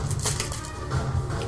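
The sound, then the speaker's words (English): Small plastic dice being taken out and handled clatter and click together, a brief flurry of light rattling taps over a steady low background hum. “Taking out my dice.”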